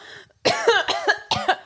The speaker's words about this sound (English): How come every time I cough now, I have this new thing where I gag? Like, I gag a lot.